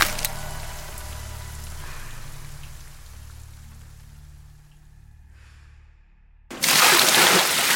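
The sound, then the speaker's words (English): A low, steady rumble fills the background until a bucket of ice-cold water is suddenly dumped onto a man's head, a loud splashing gush that continues to the end. “Tallman jerks awake as ice-cold water is dumped onto his head.”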